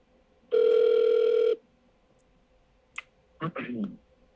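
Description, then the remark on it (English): A single steady ringback tone of an outgoing phone call placed live on the Decent Take show sounds for about a second, followed by a soft click as the line picks up and a voice briefly answers. “I'm so curious if they'll answer this phone.”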